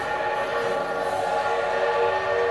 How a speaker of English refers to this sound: That's the great Corliss steam engine that runs this fair's machinery. It's operated by Miss Emma Allison of Ohio, a marvel in this age of marvels, both the machine and the lady engineer.